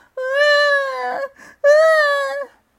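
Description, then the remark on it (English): A voice imitates a kitten's howl: two long, loud, wailing cries at a fairly high, steady pitch that sags at the end, separated by a short breathy gasp, voicing Smilo, the tiger-striped kitten, as he plops himself down on the grass and howls. “Smilo, the tiger-striped kitten, took this moment to plop himself down on the grass and howl.”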